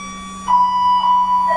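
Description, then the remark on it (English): A school bell rings: a loud, steady electronic tone starts after a brief pause and holds with slight wavering, above a low constant hum. “It's a pretty funky bell. What's the churning?”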